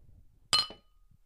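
A single bright clink of glasses touching in a toast, sharp and ringing briefly with a short metallic decay, against a quiet background.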